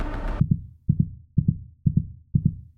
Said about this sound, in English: 13 teepees spilling indigo light. Each respires and has a deafening heartbeat.